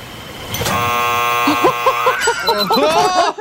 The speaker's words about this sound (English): At the buzzer.